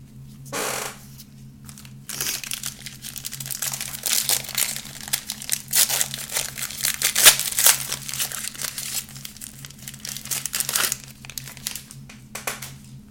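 Continuous crinkling and crackling of a 2023 Donruss trading card pack's foil wrapper being ripped open, with sharper bursts throughout, over a steady low background hum and no talking.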